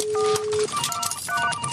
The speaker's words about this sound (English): Yeah, it's a phone. It's the Amish hotline. Let's open the phone lines.